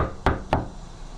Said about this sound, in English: Okay, I'm coming. You don't need to knock that hard.